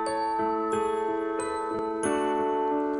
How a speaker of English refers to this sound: Boy, bad start. Bad start. When you start with a triangle, bad start.